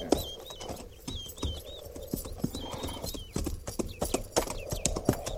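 horses' hooves clip-clopping

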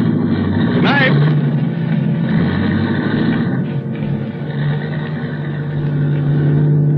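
car engine driving off

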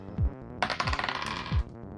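dice being rolled

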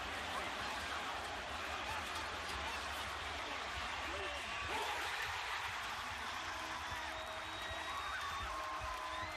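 basketball arena crowd cheering

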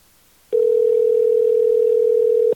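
phone call ringing tone

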